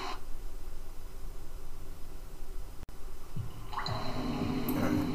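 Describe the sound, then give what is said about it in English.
Water drips in a cave over a steady, hissing ambient background, with fuller, splashier watery sounds building in the final couple of seconds. No one speaks. “Cave. Now we can go a new way.”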